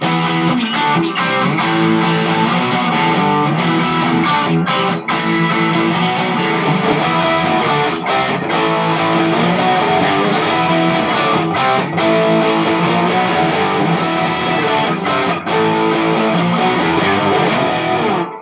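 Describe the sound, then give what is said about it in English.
A bright, crunchy electric guitar plays steadily for the whole stretch, distorted chords ringing with rhythmic strummed attacks, loud and dense with no voices over it. “So you've got quite a bright but crunchy sound there, haven't you?”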